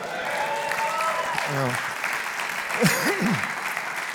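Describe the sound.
An audience claps steadily, a dense, even wash of applause throughout, with a couple of brief voices calling out or whooping over it.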